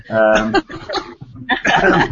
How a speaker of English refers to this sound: cough.